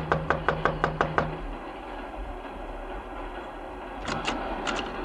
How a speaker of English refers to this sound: Just knock on the door.